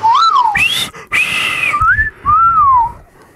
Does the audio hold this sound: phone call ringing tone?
no